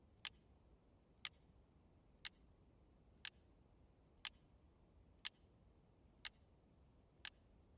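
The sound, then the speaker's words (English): A clock ticks steadily, one sharp click about every second, eight in all, fairly quiet over a faint low hum. No one speaks. “If it wasn't for the emptiness, there could be no ticking of the clock.”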